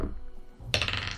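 A sudden burst of hard plastic clattering near the end, like dice tumbling and rattling across a tabletop, fairly loud, with no voices, as a die is rolled for an intelligence nature check and lands on a 4.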